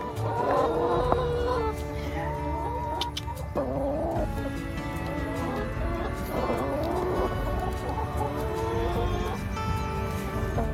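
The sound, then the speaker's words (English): Chickens in a chicken tractor cluck steadily, several birds overlapping in a busy, continuous chorus of short warbling calls over a low outdoor rumble. “This chicken tractor?”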